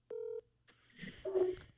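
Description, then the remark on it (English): A short, loud electronic phone tone sounds once, then a jumble of softer beeps and clicking line noise follows as a call to a friend is being dialed. “Would you like to phone a friend?”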